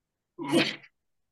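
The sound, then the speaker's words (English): A single sharp sneeze bursts out loudly, lasting about half a second, with silence before and after. “Bless you.”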